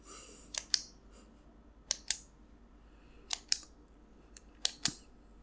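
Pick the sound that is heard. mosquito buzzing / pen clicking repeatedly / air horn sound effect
pen clicking repeatedly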